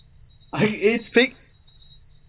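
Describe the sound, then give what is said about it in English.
Small bells on a pair of cat ears jingle in a bright, shimmering burst lasting about a second, with a voice sounding over the jingling before it fades to quiet. “I can hear the bells. The bells are picking up from his cat ears.”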